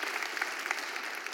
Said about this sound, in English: So all those in favor of bringing these people into membership, say yes. Yes, praise the Lord. We're glad to have them here. So let's just clap for them on that.